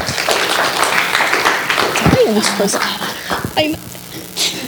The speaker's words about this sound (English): So if you want to give her a warm round of applause.